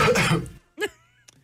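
A man coughs loudly and harshly, a rough burst followed by a shorter throaty cough after a brief pause, then a faint click.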